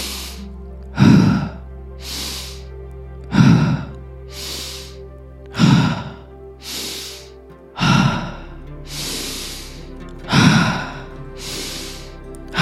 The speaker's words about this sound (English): Whatever works for you, just keep breathing, no matter what I'm doing, saying, or breathing. That's it. Push through the discomfort. Feel through it. Push through it. Being uncomfortable is okay. Keep breathing.